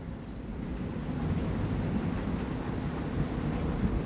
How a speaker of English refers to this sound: It is now starting to rain outside, real gently. It's lovely, my wife says.